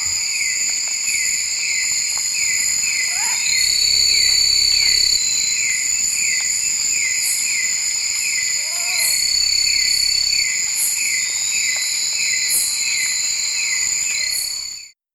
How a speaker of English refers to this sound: All right, so we might have been a little harsher than the actual bird, and maybe a little bit more, not quite a high-pitched whistle as they usually do with it rolling.